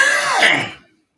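A single loud throat-clearing cough from a person with a scratchy throat, a raspy burst lasting under a second before it trails off into silence. No talking accompanies it.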